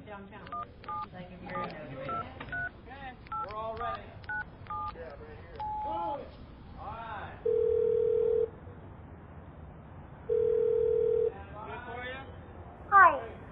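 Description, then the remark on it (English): A rapid string of beeping keypad tones as a phone number is dialed, followed by two long, steady ringback tones separated by a pause, with faint muffled voices in the background. “hand me my phone.”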